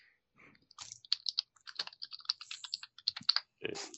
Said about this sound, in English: Stop typing.